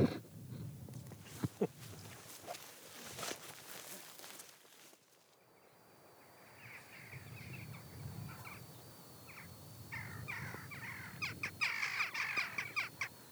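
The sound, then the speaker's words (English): Rooks caw repeatedly, a noisy overlapping chorus of harsh calls, joined by other bird chatter and a faint steady hiss, with occasional footsteps or rustling, on the coast by Fleswick Bay. “Gosh, those rooks are making a noise.”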